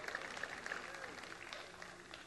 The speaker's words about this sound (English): And ladies, what do you say? That's your moment. You could clap. You can stand up.